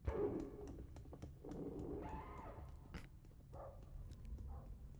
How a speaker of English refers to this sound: Wait, that's that was dogs barking. Yeah, that was like the animals.